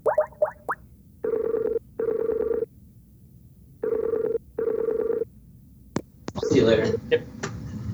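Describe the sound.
Quick dial tones open, then a phone rings in two pairs of steady electronic bursts with pauses between, followed by a click and someone picking up with a short burst of voice; a phone call to Jerry Holkins.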